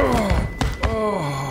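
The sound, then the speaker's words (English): A few heavy, dull thumps land in quick succession as a body falls onto a wooden floor, the skull bouncing off it, fairly loud, while a strained, groaning voice sounds underneath. “I hit the ground with a hard thump, my skull bouncing painfully off the wooden floor.”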